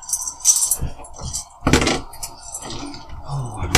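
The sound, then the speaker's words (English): Metal dice clatter and rattle in a run of sharp, bright bursts, with the loudest jangling tumble in the middle and scattered clicks afterward. “metal dice is going to cut it this round. Metal dice take me out for this combat, please.”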